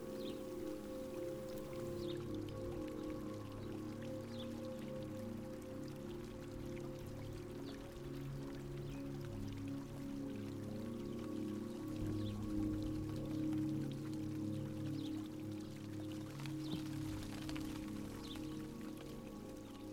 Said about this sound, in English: The sound of the rain and the fountain are peaceful.